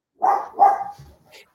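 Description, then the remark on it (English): A female dog barks twice in quick succession, fairly loud, followed by a softer trailing yelp or whine as the sound fades out. “Until she starts barking.”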